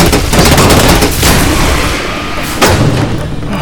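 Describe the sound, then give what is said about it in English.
Loud, dense gunfire rattles continuously inside a super-pressurized, high-oxygen metal box, a rapid barrage of shots with sharp cracks cutting through around the middle and near the end. “It's shooting bullets inside a super pressurized high oxygen metal box.”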